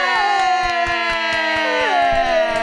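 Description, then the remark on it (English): A burst of clapping into a microphone to welcome a guest, with steady, evenly spaced claps, joined by loud sustained cheering voices whose pitch slides downward, filling the whole few seconds. “Applauding into the microphone.”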